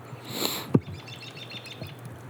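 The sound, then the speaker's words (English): Faint birds chirp in quick repeated bursts outdoors at a cabin outside Big Timber, Montana, in the Boulder River Valley, over a low rumble of wind on a windy day, with one brief thump near the start. “But I think you can hear some birds and shit.”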